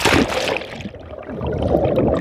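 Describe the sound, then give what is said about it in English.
Muffled, continuous water gurgling and sloshing heard underwater in Lake Atitlan, western Guatemala, with a dense low rumble and bubbly textures that rise briefly at the start before settling into a steady wash. “To better understand what I mean, we've got to go underwater.”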